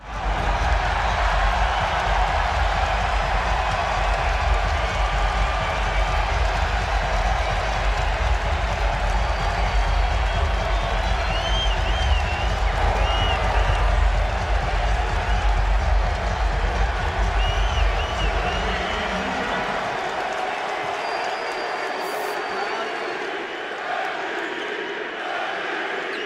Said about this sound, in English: But when D-Rose came back to Chicago, he got a standing ovation from, let's play that clip first of all.